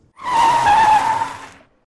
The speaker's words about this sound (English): The car stopped suddenly, and I bumped my head on the headrest.